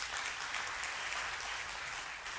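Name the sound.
audience applauding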